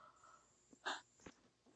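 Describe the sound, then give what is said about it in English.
A soft yawn: a brief breathy rush of air followed by a fainter exhale, quiet and unaccompanied by any talking. “Sorry, I yawned.”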